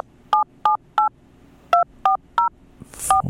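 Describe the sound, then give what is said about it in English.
Seven short, clear touch-tone beeps as a telephone keypad's buttons are pushed to dial a phone number, paired tones in a quick uneven rhythm with a brief pause after the third, loud, followed by faint handling noise. “Well, we've got a telephone. Let me see, push the buttons here, and I do that, and let's find out.”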